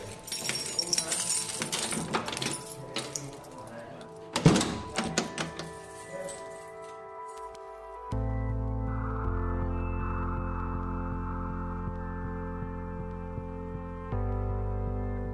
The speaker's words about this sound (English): I think they're locking. I can hear the man closing the doors.